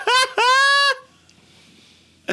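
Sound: voice imitating duck quacking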